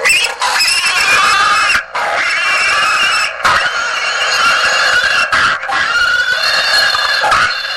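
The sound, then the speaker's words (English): A 12-volt pig squealing novelty car horn, wired to a push button, blares loud, a continuous shrill squeal broken by a few brief pauses, with no talking. “So this is our pig squealing car horn.”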